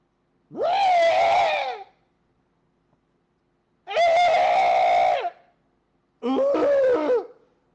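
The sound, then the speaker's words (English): A voice imitates the mating cry of Anthony Worrell Thompson with three loud, drawn-out, high-pitched wails separated by pauses, the last one shorter and more broken up. “But lo and behold, I heard his mating cry this afternoon. It goes something like this.”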